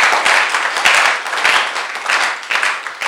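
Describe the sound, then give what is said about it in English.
A church audience applauds steadily for Jesus during a sermon, a dense wash of many hands clapping at once with small swells in loudness, no voices rising above it. “Clap for Jesus.”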